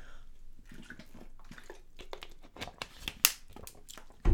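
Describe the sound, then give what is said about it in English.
Someone drinks water from a plastic bottle: soft gulps and sloshing, then the bottle crinkles and crackles in several irregular bursts, ending in a sharp knock. No one speaks. “Hold on, excuse me. I gotta drink this water.”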